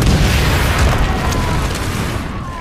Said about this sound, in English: Then, in the distance, mortars and artillery whistle and crash. They've got a zero. Geysers of earth erupt in every direction.